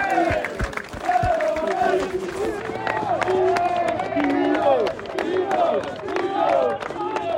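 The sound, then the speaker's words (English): A large football stadium crowd claps and cheers continuously after the match as the players are clapped off: sharp scattered claps over a dense roar of shouting voices, loud, with individual calls rising out of the noise. “He's going to clap them off.”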